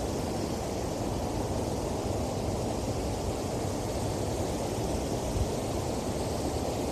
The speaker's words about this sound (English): But even the plane offers the white noise, a special beauty.